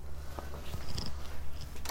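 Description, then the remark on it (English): A cat purrs while hovering at a door, a steady low rumble with soft rhythmic pulses and a few faint higher clicks, continuing for the whole moment with no voices. “Both kitties are like hovering at the door.”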